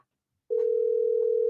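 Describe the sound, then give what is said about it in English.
After a brief silence, a steady electronic ringback tone from an outgoing phone call begins and holds at one even pitch, clear and fairly loud, with no voices. “I hear the phone ring.”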